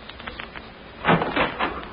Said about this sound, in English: Come along. Listen to the door. I'll open it and you step in